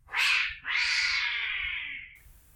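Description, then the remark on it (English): A cat lets out a loud, drawn-out meow in two parts, a short rising cry followed by a long wavering yowl that slowly fades, with no one speaking. “Don't they realise they could have made a lot more money from a talking cat?”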